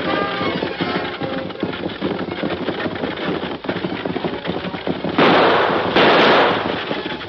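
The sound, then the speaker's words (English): Galloping hooves pound in a fast, continuous clatter as a stagecoach rumbles along, loud, with bursts of heavier rattling noise toward the end; no one speaks. “Stop them horses! Whoa!”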